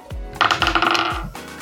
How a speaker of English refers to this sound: Well, I rolled a 15 on the dice, and my charisma is -1, so 14, I guess.